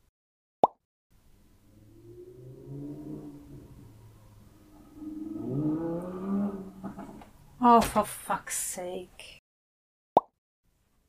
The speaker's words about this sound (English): Motorcycle and helicopter, and I haven't even started recording the chapter.